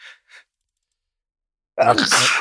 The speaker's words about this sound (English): Oh God, sneezing is never normal. It's never normal. Oh, there he is. I never sneeze.